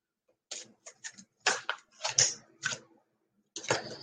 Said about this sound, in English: So when I shuffle my angel cards, I grab the ones that stick out. There's no right or wrong way. 2, 3, 4, 5. There's no right or wrong way to shuffle, but personally, what I have found is that, like that. Oh, and like that.